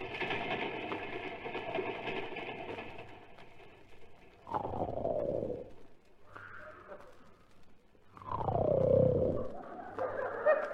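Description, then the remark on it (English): A father snores loudly while asleep: two long, rasping snores with a deep rumble that slides downward in pitch, separated by quieter breathing, after a rough, noisy opening stretch. “Listen to Daddy. Yes, Phyllis. He sounds just like the engine when it broke down at San Bernardino.”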